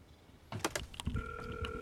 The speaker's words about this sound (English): Ah, well, the gates are opening.